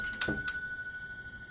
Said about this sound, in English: He studied the door, then reached out hesitantly, and gave a cord at the door 2 assertive yanks. He was rewarded with a jangle from the other side of the door.